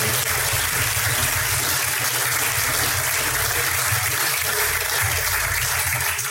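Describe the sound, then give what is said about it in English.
A crowd claps steadily for several seconds for the third-place team at a barbecue competition awards announcement, a dense, even wash of applause with no voices rising above it and no pause in the sound. “Okay, so in 3rd place, put your hands together for Lick Our Pigs Barbecue.”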